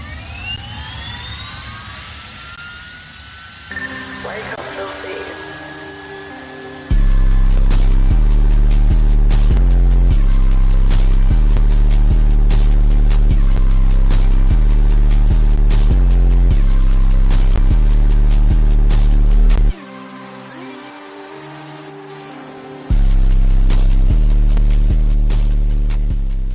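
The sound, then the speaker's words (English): An airplane's jet engine whines and rises in pitch as it spools up, then bursts into a loud, sustained roar that pushes back skateboarders heading towards the airplane, dropping out briefly before blasting back in. No one speaks. “It features some skateboarders heading towards an airplane as the engine of the airplane pushes them back.”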